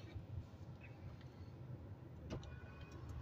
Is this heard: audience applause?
no